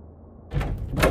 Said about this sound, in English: They march out of the front door and slam it behind them.